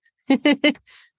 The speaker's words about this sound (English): Sophia, I know it's your dog.